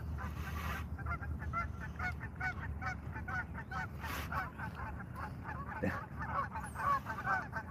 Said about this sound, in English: The geese are going nuts.